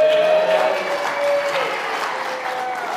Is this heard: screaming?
no